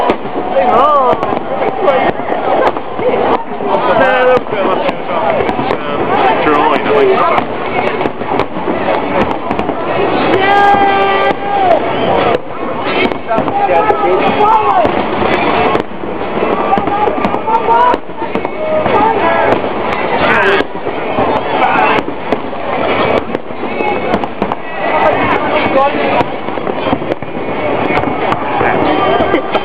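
New Year fireworks burst repeatedly over a large crowd, sharp pops and booms arriving in quick succession while people cheer and chatter loudly all around throughout.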